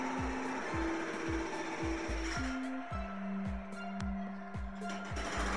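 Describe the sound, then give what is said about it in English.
Heavy construction tools outside pound in a steady, rapid rhythm of low thuds, about three per second, over a droning motor hum that shifts pitch partway through, as workers pour concrete and break up some kind of mass. No one speaks. “Yeah, they're pouring concrete and breaking up some kind of mass of some sort.”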